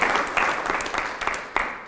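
An audience applauds the event's organisers steadily, a dense wash of many hands clapping at a fairly loud level with a few sharper claps standing out, and no voices over it.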